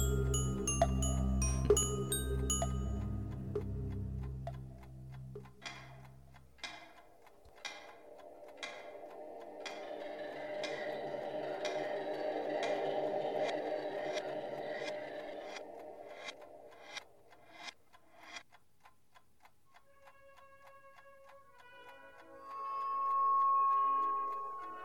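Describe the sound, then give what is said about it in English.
A clock ticks steadily at an even pace, its sharp clicks standing out over a soft swelling drone, after a louder musical opening and before a gentle tonal hum at the end. “Sir, the clock isn't for sale.”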